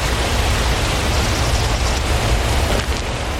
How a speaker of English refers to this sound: I don't care about the waterfall.